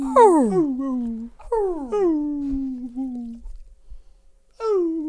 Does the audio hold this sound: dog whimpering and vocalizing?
yes